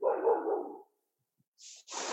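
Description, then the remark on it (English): A dog barks: one long, full bark, a brief silence, then two sharper, higher barks in quick succession. No one speaks. “I have to tend to my dog.”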